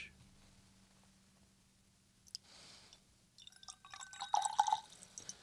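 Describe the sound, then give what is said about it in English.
A large amount of whisky glugs and trickles into a glass, starting softly and building into a brief burst of splashing and clinking drips over a low, steady hum. No one speaks. “He poured out a crap load because it's mine.”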